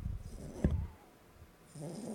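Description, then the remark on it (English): A small dog named Julius snores softly, with a low, rough breath at the start, a brief pause, then another raspy snore rising at the end. “And I'm like, hey, I've got a little snoring little dude right here.”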